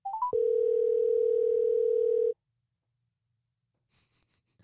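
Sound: phone ringing tone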